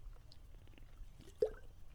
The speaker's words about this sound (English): Let me take a sip of my energy drink, because it's getting warm